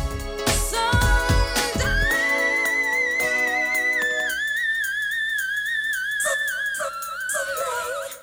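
A singer's very high whistle-register note, thin and pure, is held for several seconds with a slight waver. A short burst of instrumental music comes before it, and soft backing continues underneath.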